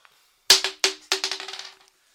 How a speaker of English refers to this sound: Just roll a d20 for me.